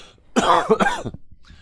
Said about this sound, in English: Pardon me, I'm going to cough.